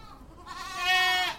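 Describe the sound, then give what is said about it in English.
A single goat bleats loudly, a wavering, nasal cry that rises and holds for about a second before fading, with no talking. “But first, there are some special firefighting animals, and they might not be the first animals that you thought of. Goats.”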